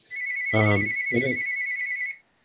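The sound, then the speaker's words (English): A mobile phone ringtone sounds as a steady, high electronic tone for about two seconds, with two short bursts of someone talking over it before it cuts off. “Is that your phone ringing?”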